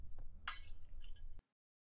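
A rat on a shelf knocks a glass bottle onto the floor; it shatters with a sharp crash, followed by a brief scatter of tinkling shards before it cuts off abruptly. No one speaks.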